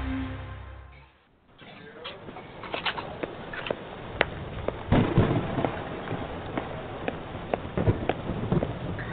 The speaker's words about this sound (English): Oh, listen to the thunder, huh?